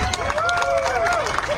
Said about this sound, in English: So of the 200 plus people there, it sounded like four were applauding. We're clapping.